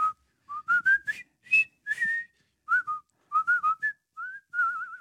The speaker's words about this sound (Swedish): Vad roligt att du sa det, för igår, igår visslade jag på den låten.